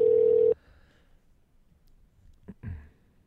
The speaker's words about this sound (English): All right, I'm calling her. Let's see. Right. There it is. There's the ring.